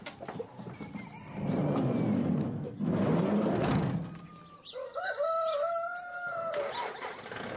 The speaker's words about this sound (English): Willie, with the chickens in the back of his van